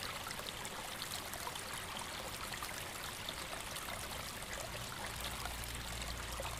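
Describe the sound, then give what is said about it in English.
A small stream snaking toward a main river trickles steadily over stones, a soft continuous babble of running water with no voices, heard evenly throughout. “In the distance, you spot a log lying on its side near what appears to be a small stream snaking its way toward the main river.”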